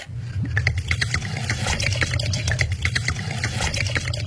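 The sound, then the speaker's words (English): Vodka glugs steadily from a bottle for about four seconds as celebrity chef Sandra Lee pours two shots while showing a cocktail recipe, a continuous pour with bubbly splashing and a low gurgle underneath, no voices. “I've also come across this sound of celebrity chef Sandra Lee for her generous pour when she was showing a cocktail recipe.”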